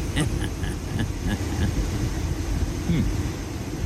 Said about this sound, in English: It sounds like he's in the car. Let's just ride with him and see how long he hangs in there. I'm waiting for him to like. It's very quiet.